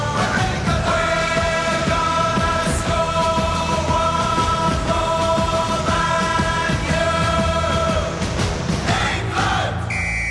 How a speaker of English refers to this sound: Then there are other songs associated with the England team, one of which is this.